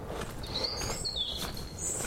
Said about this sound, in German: Es zwitschert noch. Oder wieder?